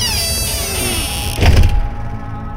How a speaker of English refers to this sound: Then, I crawled through that doorway, and I slammed it shut behind me.